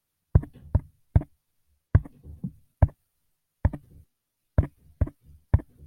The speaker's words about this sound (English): I know how to say SOS in Morse code and that's it.